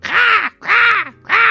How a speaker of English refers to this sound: And the monkeys, who were climbing in the trees nearby the nest, heard the crow's squeal.